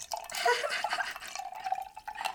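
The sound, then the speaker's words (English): Wine pours steadily into a glass for a couple of seconds, a bubbling trickle with a rising pitch as the glass fills, no voices. “So, oh, there it is. Pouring the wine.”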